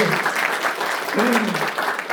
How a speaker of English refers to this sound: I loved Dan for everything that Dan shared during the presentation. Big round of applause for Dan.